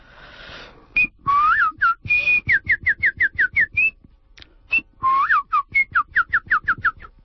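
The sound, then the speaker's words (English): A person whistles a lilting tune alone, clear, with quick repeated notes, sliding phrases and short pauses, like a birdlike melody, before a reading in English begins. “The English with the whistle and then start it.”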